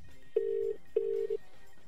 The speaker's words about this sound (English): I thought we'd just give them a little try, a little tingle. So we're just dialing the number, see if anything's going to happen. And here it goes.